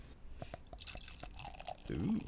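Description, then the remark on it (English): A dark beer being poured into a glass, starting as a quick series of glugging splashes and building into a louder, steadier fizzing stream near the end, with no talking. “Ooh, nice pour. That is a dark beer.”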